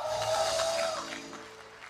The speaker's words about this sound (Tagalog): Sumigaw ng malakas. Isa pang sama-samang talon, palakpak, sigaw, lukso, lundag. Woo!